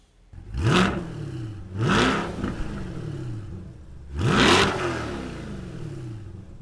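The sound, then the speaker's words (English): A 2021 Corvette Stingray's engine revs in three loud bursts, each a quick rising roar that falls away, with a steady idle rumble between them and no talking. “Me taking you for a ride in a 2021 Corvette Stingray.”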